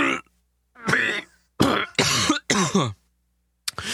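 Someone coughs hard in a series of about five loud, raspy bursts, strained and gagging as if choking on food, with short pauses between fits.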